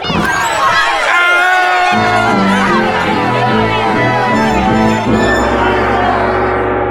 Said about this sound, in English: Miss Buckaroo, that angry mob of West Buzzard's Bottom citizens is clamoring to open this locked door and take me prisoner. Can you help me?